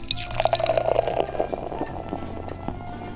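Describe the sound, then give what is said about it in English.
Beer glugs and splashes steadily into a Belgian tulip-style glass, poured straight in without holding the glass up so it is almost all foam head; a continuous pour with bubbling and a rising gurgle over about three seconds, no talking. “I'm gonna go ahead and try and pour this shit.”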